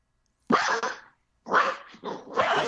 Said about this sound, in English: I take it Simba is not happy with that decision. Sorry about everyone that's listening. That's Ted's dog.